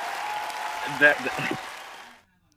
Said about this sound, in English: Bravo to you, sir. I'm going to give you an applause.